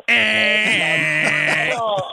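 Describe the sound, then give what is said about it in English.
A voice imitates an America Online (AOL) dial-up modem connecting over a phone: a loud, steady, high-pitched screech lasting about two seconds over warbling, buzzy tones that waver and shift before cutting off. “I am old enough to remember that while you were doing that, you would listen to that loud ringing that your phone would give. The America Online.”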